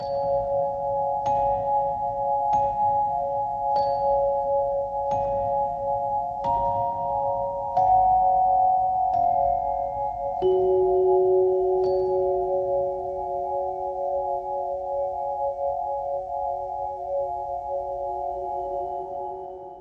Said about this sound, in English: where they use this kind of doll chime, this very innocent and absolutely beautiful and magical just music cues. I love that. That was fantastic.